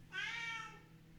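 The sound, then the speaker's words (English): A single cat meow, drawn out, rising then fading over about a second, with a faint low hum underneath and no voices. “Freaking cat, what? Go away.”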